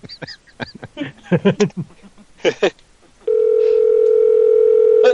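Brief bursts of talk give way to a steady, loud electronic telephone ringing tone, a single unbroken mid-pitched hum lasting almost two seconds before cutting off, as a phone call is placed to a restaurant in Columbus.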